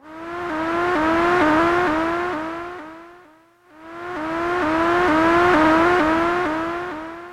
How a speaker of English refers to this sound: An atonal electronic synthesizer seagull sound. The sound you're hearing is being generated by a plastic, portable, almost toy-like monophonic synthesizer called the Wasp, made in 1978 by Electronic Dream Plant